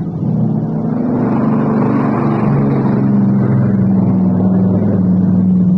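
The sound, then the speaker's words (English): A Catalina coastal patrol plane's propeller engine drones loudly and steadily, a low, throbbing hum whose pitch wavers slightly as the aircraft circles back. No voices are heard. “It's a coastal patrol, Catalina.”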